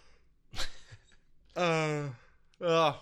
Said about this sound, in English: Yeah, no kidding. Yawn breaks like crazy tonight.